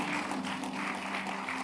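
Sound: audience clapping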